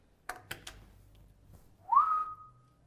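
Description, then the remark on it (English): A few sharp clicks, then a single human whistle that swoops upward and holds steady for about half a second, mimicking the rising whine of a truck turbo. The whistle is fairly loud. “Will this make my truck whistle?”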